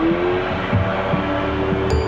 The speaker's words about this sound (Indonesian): Perhatikan para pelancong yang bermain jet ski.